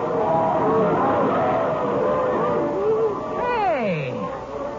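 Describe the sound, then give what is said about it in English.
A group of men, the monkey men, shouting and whooping together in excitement and dancing around over the killing of the Igmi, many loud overlapping voices throughout, with one long cry sliding downward in pitch near the end. “Listen to them shout and look at them dancing around.”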